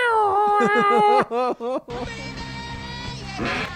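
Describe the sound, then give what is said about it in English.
Loud, wavering wails rise and fall like a cat yowling in heat, several drawn-out cries in quick succession, then giving way to a steady, buzzy musical drone. “Like it sounds like a cat. Yeah. Just the like in heat.”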